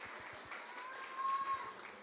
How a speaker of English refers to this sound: Wow, I think you deserve to give yourselves a clap for that. That was amazing.